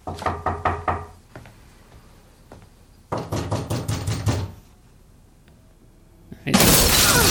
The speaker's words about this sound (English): Somebody just broke down the door.